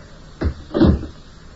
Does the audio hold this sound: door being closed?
yes